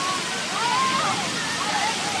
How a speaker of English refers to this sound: We leave you this week splashing about in a fountain. Right next to our studios in downtown Boston is a huge circular fountain at the Christian Science Center, It is designed for people to come and play in during the hot days of summer.